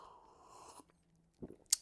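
An airy slurp of someone sipping a hot Lemsip lemon drink, followed by a soft swallow and a small sharp clink, all quiet with no talking.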